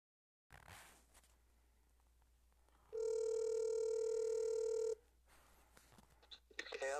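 A phone call being placed: faint clicks of dialing, then a loud, steady two-second ringing tone over the line, followed by quiet line noise and soft clicks.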